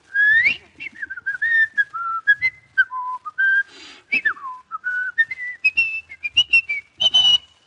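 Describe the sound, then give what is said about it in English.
Someone whistles a lively tune, a clear, bright melody with quick notes, slides and trills, and no talking. “The way you whistle, it sounds like the dog has a cat up a tree.”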